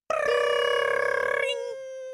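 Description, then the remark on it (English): A voice imitates a school bell ringing: a loud, rapid trilling buzz held for over a second, then tapering into a fading hum. “School bell on three?”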